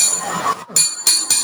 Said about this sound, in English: that flat bell is my buzzer.